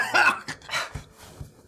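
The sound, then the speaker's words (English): A person imitates harsh coughing and hacking, as if coughing up blood and hacking out poison: a quick run of rough, raspy bursts, fairly loud, with no talking. “coughing up blood. And hacking out poison.”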